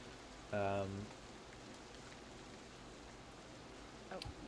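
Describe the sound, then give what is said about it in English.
Steady rain hisses evenly throughout, a soft continuous wash of drops. Early on, a brief loud voiced sound cuts through, and a faint short noise comes near the end. “He says that we're welcome to stay in the barn for a night and get out of this rain.”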